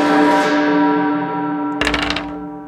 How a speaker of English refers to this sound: Okay, you hear a loud bell. Or does only it hear the bell?